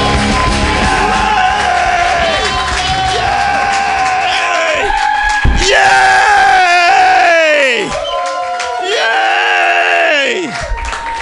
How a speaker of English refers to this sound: Keep applauding!